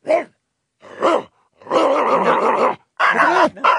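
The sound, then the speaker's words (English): A recording of dogs barking plays loudly in four bursts, two short barks and then longer stretches of snarling, growling barks, with no one talking over them. “So all right, let's see how he goes with other dogs here. Let's just do this, and I'll see if it stirs him up.”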